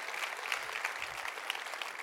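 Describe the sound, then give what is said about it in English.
A crowd claps steadily, a dense patter of many hands applauding at once, even in volume throughout, with no one speaking. “And that's why I think she deserves one more round of applause for all that she's doing.”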